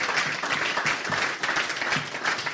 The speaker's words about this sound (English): I hold the world record for a kilometre outdoors. Wow. Which has stood since 2003. He's got to get a clap for that, surely.